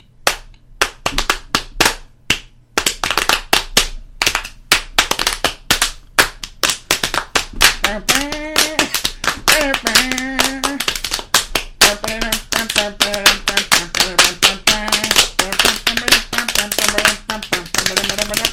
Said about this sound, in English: It's basically ham boning. I think it is ham boning, but we just didn't know what ham boning was. It's like stomp, but or tap dancing, but for your hands and legs. So you just start with like making like noises like.